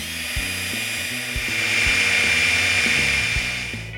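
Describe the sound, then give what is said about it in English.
A power drill grinds steadily into the hard metal of a safe found in a scrapyard, a continuous high-pitched whine with a rumbling, shifting motor tone underneath, loud for the full stretch, with no voices. “Okay, I decided to drill it right here.”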